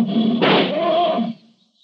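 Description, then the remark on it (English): A lion lets out a single loud roar lasting just over a second, rough and throaty, then cuts off into quiet. No one speaks. “If he stirs, the lion will kill him.”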